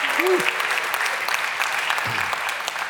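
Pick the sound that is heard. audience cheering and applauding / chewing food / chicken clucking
audience cheering and applauding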